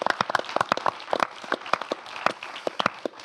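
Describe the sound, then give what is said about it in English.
An audience applauds, producing a steady patter of many overlapping sharp claps at moderate volume, with occasional louder individual claps standing out. No one speaks over it. “Everybody, round of applause for everybody here.”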